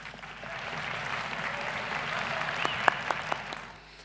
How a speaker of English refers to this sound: Clap, clap, clap.